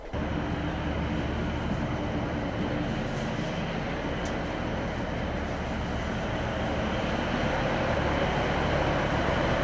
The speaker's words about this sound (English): Right, let's hop on this train, shall we? Since this is the one going the right direction. Oh, look at this. Glamorous. Anyway, right, enough of that. It's not a hugely busy train, as you can see.